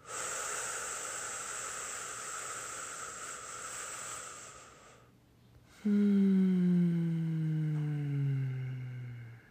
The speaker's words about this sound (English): How else can you take a slow big breath in and let it out? Let's try it.